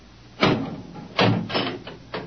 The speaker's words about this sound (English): Open the door. I beg your pardon? The door, Professor. Very well.